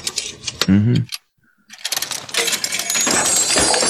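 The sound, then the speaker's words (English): Metallic clinking and jingling of a bag of coins being handled, in two busy bursts separated by a brief silent pause, with the rattling growing dense and steady toward the end. “A magician once came through these doors, and he left a bag of coins. Could you grab them for me”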